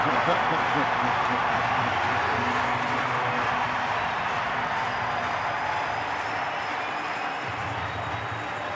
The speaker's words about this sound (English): They left Joe Ingles wide open. He hits the three, and you cannot hear me. And Ty Lue has used his final timeout with 3 minutes left. He's got this crowd going crazy.